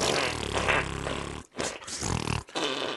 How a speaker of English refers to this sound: Just fart noises.